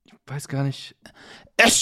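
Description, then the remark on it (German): A person speaks briefly, then a single loud, sharp sneeze bursts out at the very end. “Oh, sorry, ich musste gerade niesen.”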